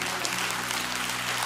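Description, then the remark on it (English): An audience claps steadily, a dense, crackling wash of many hands that holds an even loudness for the whole short stretch, with no voices over it. “See, people are going to watch this and hear the clapping.”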